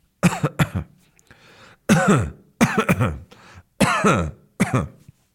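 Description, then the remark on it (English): An adult coughs several times in short, throaty bursts, some paired, spaced over a few seconds. Fairly loud, with quiet pauses between them and no other sounds. “They would cough.”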